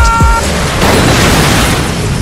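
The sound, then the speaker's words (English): A loud, rumbling explosion bursts out with a heavy low-end boom as a helicopter's tail is hit, apparently by some type of RPG, followed by a sustained roaring wash of noise and tonal whine, with no voices present. “The tail of the helicopter has just been hit! We're going down! They have some type of RPG down there!”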